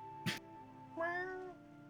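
A cat gives one clear, drawn-out meow, rising then falling in pitch, moderately loud, shortly after a brief sharp knock. No one speaks.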